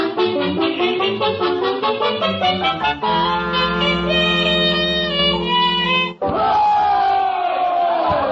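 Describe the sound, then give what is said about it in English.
A large crowd at a political rally chants in loud rhythmic bursts, then holds long sustained shouts before breaking into a dense, roaring wave of cheering. “Oh, chicken, ain't this some rally?”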